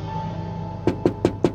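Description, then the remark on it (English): Four light, evenly spaced knocks on the front passenger window of a rented car waiting at the Gatwick spaceport, arriving after a stretch of steady low hum. No one speaks. “There was a gentle rap on the front passenger window.”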